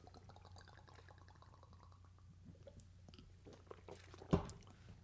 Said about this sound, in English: And so we're going to cheers some Fireball to you right now. One, two, three. Clink. Clink, clink, clink, clink, clink, clink, clink, clink, clink, clink. Yeah. Clink. And we're drinking it now.